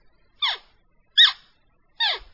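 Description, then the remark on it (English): Three short, high bleats from a deer call imitating a young axis deer, each sliding downward in pitch and spaced evenly apart, with silence between them and no talking. “And you're simulating a young axis.”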